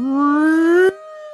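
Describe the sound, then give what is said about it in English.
A loud, buzzy siren wail, played as a "hot take alarm" sound effect, sweeps steadily upward in pitch for almost a second, then cuts off abruptly and gives way to a quieter, steady held tone. “That's the hot take alarm, folks.”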